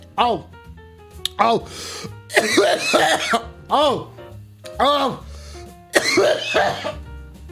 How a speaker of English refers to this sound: I even recognized your cough.